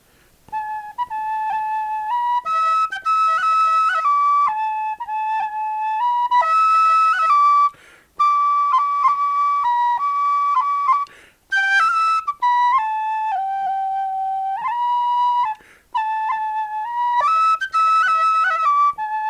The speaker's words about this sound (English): So this is called Lunix Faravata, or the Boatman's Song. But anyway, here it is just real quick on whistle.